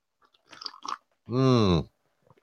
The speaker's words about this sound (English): Okay. I think my coffee's probably cooled down enough for me to have a sip and see.